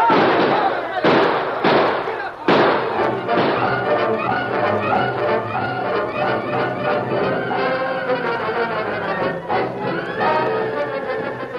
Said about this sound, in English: With bullets flying thickly about them, the masked men and Tonto raced to safety